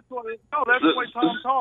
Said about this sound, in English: your phone's breaking up. So. How about now?